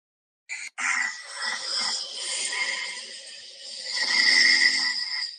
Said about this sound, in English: And it has like different levels, right? It's quiet snoring, which is... That's quiet snoring. Then it's got medium level snoring.